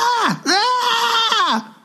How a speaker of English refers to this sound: Okay, that's the first time I heard him scream.